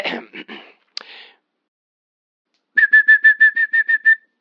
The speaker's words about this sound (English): Next, the yellow-tailed black cuckoo from Australia, whose song can range from soothing to rather eerie.